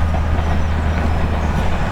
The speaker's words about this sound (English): Just when the train was going by.